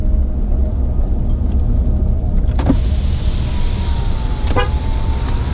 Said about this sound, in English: Somebody's honking. not for me.